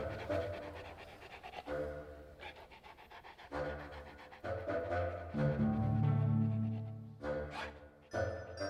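A dog named David pants in quick, steady bursts of breath in the back of a car, the rhythmic huffing continuing through the whole stretch with only brief pauses.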